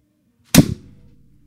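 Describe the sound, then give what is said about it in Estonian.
A single loud, sharp hand slap swatting at a fly on a tap to kill it cracks out of silence and fades quickly with a short low rumble trailing after it. “Ma olen tavast väga hea selles, et suga kiire snap käib.”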